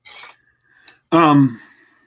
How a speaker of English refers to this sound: As I clatter some dishes together here, and you get to hear that, folks, that's just extra service from the Gab.